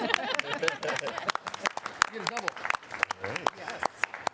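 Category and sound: crowd, audience clapping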